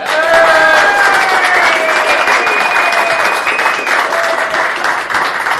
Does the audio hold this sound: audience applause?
yes